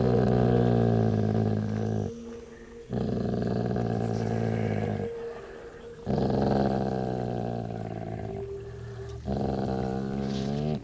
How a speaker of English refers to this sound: He erupted into barks.